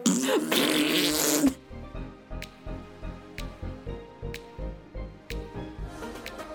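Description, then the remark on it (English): A female pet named Alexa farting in a long string of short, low, sputtering puffs at a steady rhythm, with occasional sharp clicks, following a brief burst of loud hissing noise. No one speaks. “Oh my God, she's still farting.”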